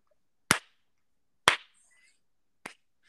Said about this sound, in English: Slow clap.